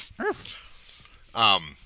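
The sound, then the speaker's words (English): A dog named Ubu lets out a short, high yip, then after a brief pause a louder single bark with a strong harmonic ring. “Sit, Ubu, sit. Good dog.”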